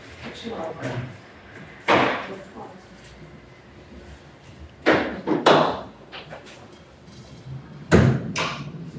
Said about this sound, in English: Would you mind closing the door? Thank you.